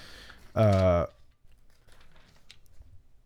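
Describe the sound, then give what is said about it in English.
Soft, papery rustling of book pages being turned to Matthew, a few quiet flicks and crinkles, following a short loud voiced sound at the start. “So if you were to go, I believe in Matthew, can hear the pages turn.”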